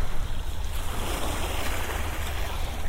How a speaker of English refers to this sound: It's a tiny little waves hitting the shore, and sometimes they gently lap around